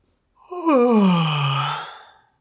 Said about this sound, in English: So right now, just take a really slow breath. Make a big yawn.